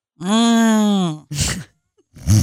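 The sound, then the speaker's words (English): A person imitates a deep snore: a long, loud, droning voiced rumble followed by two shorter breathy, rasping snorts, with no other talking. “That's a snore right there.”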